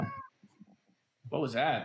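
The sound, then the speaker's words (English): A person speaks briefly, then after a short pause their pet cat gives one loud, drawn-out meow, its pitch rising and falling. “That was my cat.”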